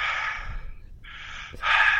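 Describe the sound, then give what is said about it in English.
Heavy, hissing breaths into the microphone during a voice call: a long exhale, a brief pause, then two more loud breaths in quick succession, with no talking. “Well, I would say the main benefit right now that I can hear is I don't hear you breathing in the background.”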